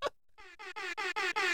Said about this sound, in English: My podcast father, Joe. Do y'all know where I got this air horn from?